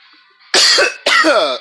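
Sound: coughing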